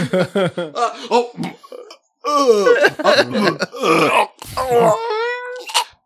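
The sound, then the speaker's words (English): A string of loud, drawn-out belches with a groaning, moaning quality and wavering pitch, coming in quick bursts with a brief pause partway through. “Just farting and belching and like just I love it.”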